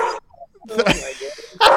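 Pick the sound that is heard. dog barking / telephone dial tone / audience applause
dog barking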